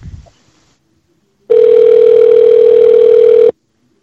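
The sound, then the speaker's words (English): A telephone on-hold tone: one loud, steady, mid-pitched electronic beep holds unchanged for about two seconds, then cuts off abruptly. Near-silence surrounds it, apart from a brief faint rustle at the start. “Okay, let me put you in a brief hold.”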